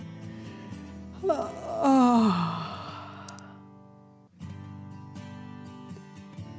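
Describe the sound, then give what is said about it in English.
A single big, drawn-out yawn with a falling, moaning pitch, loud, over a soft, steady musical bed that continues quietly after it fades, from a storybook character worn out after having fun. No one speaks. “Boz was the first to let out a big yawn. Roz and Tysen were yawning soon after.”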